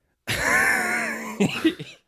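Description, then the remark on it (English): A loud vocal outburst: a long, strained, voiced wheeze breaks into a few sharp coughing bursts, like laughter dissolving into a cough. “That's the biggest cough laugh ever.”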